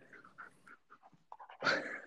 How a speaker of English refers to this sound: Sorry, like, I'm, my dogs are all over me.